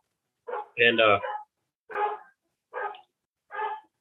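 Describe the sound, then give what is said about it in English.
Several sharp dog barks, one loud and full followed by three shorter, higher yips spaced about a second apart, with a hint of whimpering in the tone. “Put the dogs out back.”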